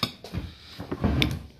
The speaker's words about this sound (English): My chicken fell on the floor. Use your 5 second rule.